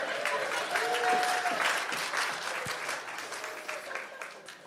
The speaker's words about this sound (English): That's right. Some applause for the four plants.